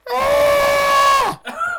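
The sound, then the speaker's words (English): A person's voice mimics a cougar (mountain lion) scream: one long, loud, strained screech held for over a second, bending downward at the end, followed by a shorter, softer wail. “What sound does a cougar make?”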